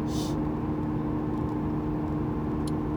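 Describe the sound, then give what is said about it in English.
Steady low rumble of a car cruising at 60 miles an hour, heard from inside the cabin as constant road and engine drone, with a brief hiss near the start. “Okay, now I'm going 60 miles an hour, and I'm getting 32.”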